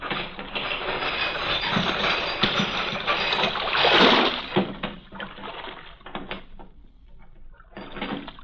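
A heavy chain that closes the mouth of a port at night rattles and ratchets continuously as it is lowered, over a rushing, watery wash, swelling to a louder surge midway, easing briefly, then clattering again at the end.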